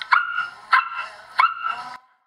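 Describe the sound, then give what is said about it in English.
A person imitates a dog, letting out three convincing barks at a steady pace, each with a short trailing whine. Fairly loud, with no talking around them. “It sounded like there was a dog in the bagel shop.”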